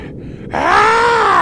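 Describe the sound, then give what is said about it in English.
A voice imitates a monster's heavy breathing: after a brief quiet breath, a loud, drawn-out guttural groan swells up and holds close to the microphone for about a second. “You guys are in the room, and then Parnell, suddenly you hear a heavy breathing like...”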